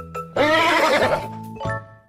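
A single loud horse whinny rises sharply into a bright, wavering neigh, then trails off with a lower snorting tail, heard on its own with no talking.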